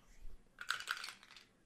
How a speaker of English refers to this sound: what I'd like you to do is we're going to roll that with disadvantage. So roll 3 dice and pick the 2 lowest.